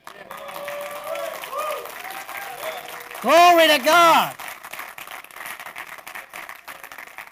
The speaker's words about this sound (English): Well, listen, if you're going to give him a hand clap, you ought to give him one.